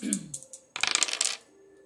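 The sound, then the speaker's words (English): Two dice are rolled: a soft shake, then a quick burst of rattling clicks as they tumble across a hard surface and settle on double four, with no voices. “Let's roll the dice and jump right into what's below the surface, okay?”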